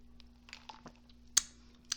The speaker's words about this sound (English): This is a caramel iced coffee with oat milk. Let's take a sip together of our drinks, depending. So cheers.